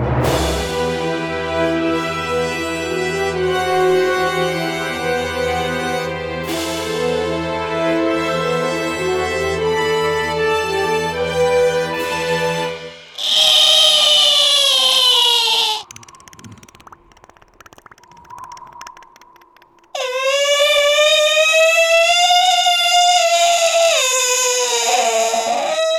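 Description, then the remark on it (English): A prematurely born, baby-like creature with small fleshy wings, lying in a pool of blood, lets out two loud, shrill, wailing screeches with a moaning, baby-like quality, following a long stretch of low sustained droning tones; no one speaks. “Doroth, it makes eye contact with you, then screeches.”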